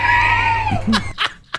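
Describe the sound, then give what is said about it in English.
A loud, sustained high-pitched scream that bends downward at the end, followed by a few short, breathy bursts of noise, played from a recording of people screaming. No one is talking. “At what time does Pat just play the soundtrack of people screaming for the rest of today's show?”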